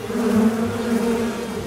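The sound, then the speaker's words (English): A dense swarm of bees buzzing steadily, a continuous droning hum with layered wingbeat tones that holds at a fairly loud, even level throughout, with no voices. “Or a swarm of bees.”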